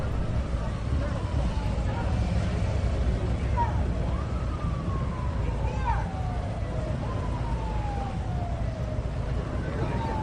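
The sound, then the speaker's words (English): Police sirens from Donald Trump's passing motorcade as he arrives wail in repeated, falling sweeps, rising again every couple of seconds, over a steady, dense wash of crowd noise from people outside cheering for Trump and indistinct voices. “The motorcade.”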